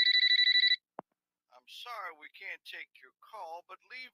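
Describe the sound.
A single loud, trilling telephone ring from a call to a home in Mississippi in the late 1980s goes unanswered and stops, followed by a sharp click and then a person speaking, much like an answering machine picking up.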